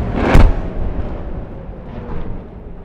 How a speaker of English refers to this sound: That was a rather large explosion. That is something we have not heard very much here in Tel Aviv.